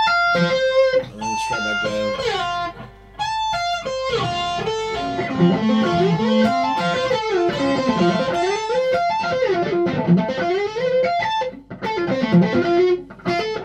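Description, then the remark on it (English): A distorted electric guitar plays a continuous melodic run at frets 17, 13, 13, sliding down to 6, back up to 10, 10, 7, 8 and sliding up again, three notes in a row played with the first finger; notes slide between picked tones, loud and sustained throughout with no voices. “So you're playing three notes in a row with your first finger.”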